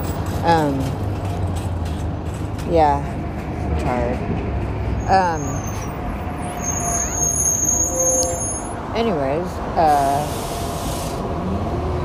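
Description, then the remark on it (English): Steady low engine rumble of a city bus, with high whining tones like brakes or a door chime, as it pulls up to a stop for a rider heading home from work. A person speaks briefly over the noise. “I just got off the bus, and I see another bus coming, so I am going to take the bus instead of walking home.”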